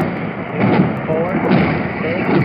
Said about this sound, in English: Now, there go two rockets. There go two more. And there go two more. Six, eight rockets now. He's letting go of the works. Do you see a bomb dropping? Let's hear how many explosions we hear.